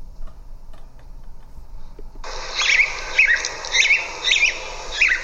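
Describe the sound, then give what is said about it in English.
After a couple of seconds of low hum, a recorded house sparrow's song begins: a run of warbling, robin-like chirps in five or so short, repeated phrases, clear, with no talking. “I think we got it there, so that doesn't sound so much like a house sparrow.”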